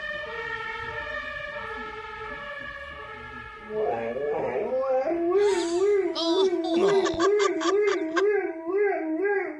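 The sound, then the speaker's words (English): A steady, siren-like wail gives way to a dog's loud howl, its pitch rising and falling in a rapid wavering pattern that mimics a police siren, broken by a few sharp yelps. “Now, this is a dog imitating a police siren, which sounds like it's probably from the UK.”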